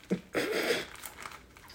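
A plastic bag of cream is squished: a soft thump, then a louder burst of crinkly, squelching plastic lasting about half a second, fading into faint scattered crackles. No one speaks.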